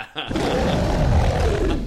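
A deep, loud lion roar rumbles for nearly two seconds, a sustained throaty growl that swells quickly and holds steady before easing off slightly at the end.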